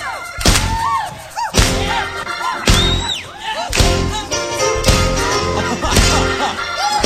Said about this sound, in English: Come on, clap your hands with us.